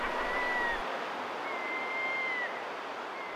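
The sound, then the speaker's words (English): A subway train roars steadily through the 42nd Street subway station, a dense wash of rumbling noise with thin metallic squeals drifting in and out above it; no one speaks. “I think Wally Blue is down in the subway.”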